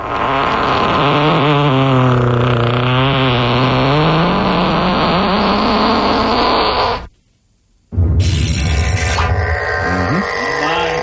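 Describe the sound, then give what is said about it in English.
A loud, drawn-out fart sound effect with a buzzy, wavering pitch that slides up and down for several seconds, breaks off into a short silence, then returns as a harsher, noisier blast. “Well, sounds like the fart.”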